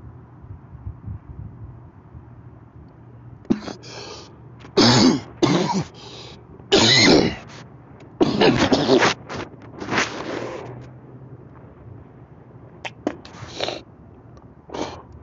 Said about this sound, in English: Just coughed up a whole damn lung.